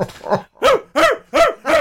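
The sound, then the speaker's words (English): A dog barks in a quick, steady series of four loud, sharp barks, preceded by a couple of softer yips. It sounds clear, with no talking. “I thought the dog was going to get hurt. I was concerned for the dog.”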